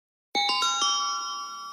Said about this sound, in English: Oh, that's Wheel of Fortune. That is the Wheel of Fortune chime. I forget what it indicates, but that is the Wheel of Fortune chime.